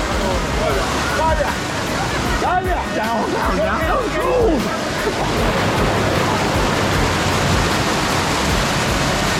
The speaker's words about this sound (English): There's a waterfall down there. They got pulled down. That can't be safe. There's a waterfall behind us and they're close to it and I'm a little concerned for them.